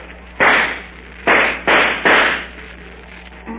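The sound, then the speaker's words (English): .45 pistol gunshots: four sharp, loud cracks, one alone and then three in quick succession, each trailing off in a brief ringing decay, with no voices. “I can shoot fast as anybody. You see that pine cone hanging from that tree?”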